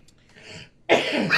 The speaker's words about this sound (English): Seems I'm getting like all excited and then too. I start coughing. Great. Real professional on my part.